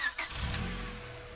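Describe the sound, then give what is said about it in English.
A hired car-service car's engine turns over with a short burst at the start, then settles into a steady low rumble that continues, moderately loud, with no voices. “He calls her a car service. $40, my treat. And behind the wheel is Jeff's other friend.”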